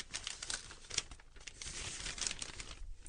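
Newspaper pages rustle and crinkle in a continuous stretch of crisp, papery handling as someone searches the paper for a headline, with a few sharper flicks as sheets are turned, fairly quiet, with no one speaking.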